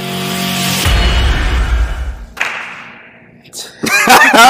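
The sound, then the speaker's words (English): A single loud, sharp clap hits after a low rumbling swell, then rings out and fades. Voices rise briefly near the end. “They let you know that it's showtime. When that clap go off, clap, y'all.”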